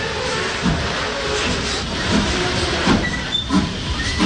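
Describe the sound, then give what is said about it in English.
A steam train on a heritage railway near Dartmouth on the River Dart rumbles steadily, a broad hissing roar with low thumps recurring every second or so, like wheels clacking over rail joints or heavy chuffs. No voices. “Well, apart from the castle and the cream teas, the joys of the River Dart are the town of Dartmouth itself, and also the opportunity to hop on a good old-fashioned steam train.”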